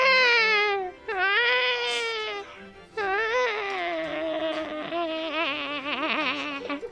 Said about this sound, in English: The babies, my dear. The babies, they scream at me still. They scream as in my dreams.